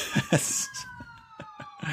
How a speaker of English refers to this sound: There's an ambulance going to pick somebody from the ACLU that just had a heart attack worrying too much about this.